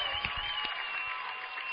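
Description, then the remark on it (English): A crowd applauds steadily at a ceremony honoring Wayndale's 60th anniversary All-Ohio teams, a dense wash of many hands clapping at an even level throughout, with no voices standing out. “Ladies and gentlemen, please give a round of applause for Wayndale's 60th anniversary All Ohioan teams.”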